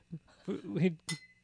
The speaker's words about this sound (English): Let's cheers with your empty glass